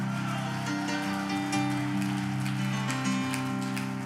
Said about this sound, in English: Give the Lord a hand clap of praise and shout with the voice of triumph.